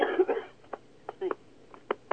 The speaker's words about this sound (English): Excuse me, I'm just going to cough.